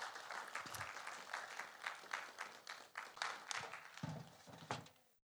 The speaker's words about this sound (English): Give them a big clap.